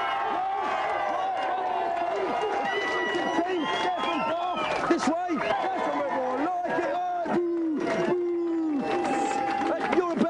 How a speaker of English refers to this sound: Okay, then. Well, let's have a big cheer for the Aladdin team.